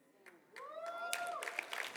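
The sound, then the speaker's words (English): After half a second of near quiet, an audience breaks into steady, dense applause, with a voice cheering in a long rising-and-falling tone over the clapping. “You clap.”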